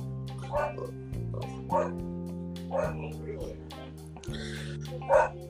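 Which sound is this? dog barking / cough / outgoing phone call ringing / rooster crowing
dog barking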